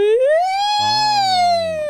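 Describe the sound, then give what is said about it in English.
A voice does a siren vocal exercise, sliding smoothly upward in pitch and holding a loud, steady sustained tone, with a second lower voiced layer joining partway through, continuous for about two seconds. “Exercises, vocal exercises. You know, speech. And just like, you know, you've ever done a siren?”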